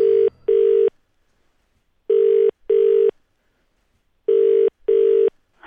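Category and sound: signal or alarm, telephone ringing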